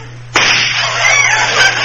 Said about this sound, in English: Hey, what was that for? I don't know. Thought it was time for some gunshots.